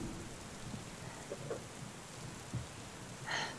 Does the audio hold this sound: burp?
no